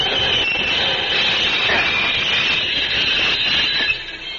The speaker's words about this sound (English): I will stop this locomotive.